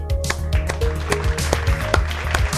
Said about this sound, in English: So let's give those guys a round of applause. And lady, there's here we go. I'm clapping.